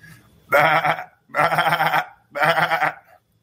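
Three loud sheep bleats in a row, each a wavering, nasal baa lasting about half a second with short pauses between, and no talking around them.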